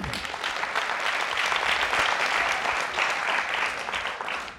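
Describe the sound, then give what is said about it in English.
Steady crowd applause fills the whole stretch, a dense wash of many hands clapping at an even, loud level with no voices rising above it, as an audience applauds a volunteer coming up on stage. “Everyone, please give him a round of applause.”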